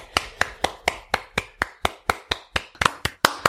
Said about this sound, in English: But it sounds a bit like balls slapping when we clap on the podcast. It does make that quick sack sound, aww, doesn't it?